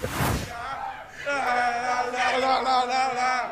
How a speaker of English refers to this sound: We have also proof on the social MO today that people will make a football chant out of anything. Okay. If you thought that you couldn't make a football chant out of a guy carrying a seagull out of a restaurant, you were wrong.